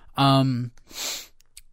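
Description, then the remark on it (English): A brief voiced sound, then one sharp sniff rushes right into the microphone with a breathy, hissing texture, followed by quiet. “I sniffed right into the microphone after telling other people not to do it.”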